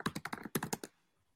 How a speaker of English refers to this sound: Some aggressive typing. Type for the purpose.